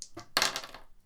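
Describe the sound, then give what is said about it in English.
A quick rattle of dice tumbling onto a hard table for a d66 re-roll: a few light clicks, then one sharp clatter that fades over a fraction of a second. Fairly quiet, with no voices. “you get to re-roll the d66 once.”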